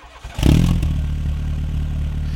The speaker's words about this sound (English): I'm putting the key in. I'm gonna give it a try. I'm gonna fire it up. Okay. Here we go. 3, 2, 1.